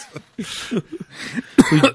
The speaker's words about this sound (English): … made you cough? I don't know where that came from.